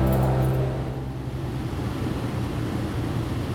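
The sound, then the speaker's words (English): Air conditioning runs aboard a very hot band tour bus (bandwagon): a steady, loud whooshing blow over a deep engine-like rumble, with a brief low tonal hum at the start. No one speaks. “The unmistakable sound of air conditioning on a very hot and sweaty bandwagon.”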